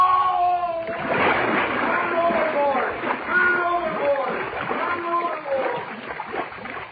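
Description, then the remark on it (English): A heavy splash as a man falls overboard into water, followed by continuous churning and thrashing splashes, with agitated voices crying out over the commotion. “Help! I fell in.”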